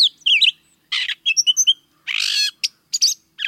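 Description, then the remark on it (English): A gray catbird sings a varied, jumbled series of whistles, squeaky notes and harsh mewing phrases, delivered in quick bursts with short pauses, clear with no other sounds. “Gray catbirds are improvisers in the foods they eat and in their ever-changing songs.”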